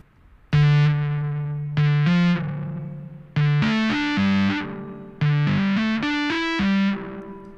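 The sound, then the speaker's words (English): Electric guitar through a fuzz pedal, with reverb placed before the fuzz in the pedal chain, plays four short phrases of sustained notes, thick and buzzing, with a smeared reverb wash feeding into the grit; loud, no voices. “we'll put the reverb in front of the fuzz.”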